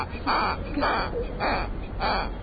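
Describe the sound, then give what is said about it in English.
A squeaky toy cow squeezed four times in a steady rhythm, each squeeze giving a short, nasal, honking squeal, fairly loud, with no talking. “Where did you get your squeaky cow?”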